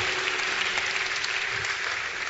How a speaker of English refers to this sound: Keep clapping. Put your hands together for the Lord.